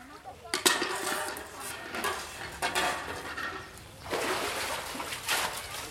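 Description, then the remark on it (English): Steel water pots clank against each other several times, fairly loud, while water sloshes and splashes around them as women farmers haul up water from a village well in India, with faint voices murmuring in the background. “At least twice each day, women farmers in this Indian village walk to one of the local wells, drop in a bucket, and haul up water.”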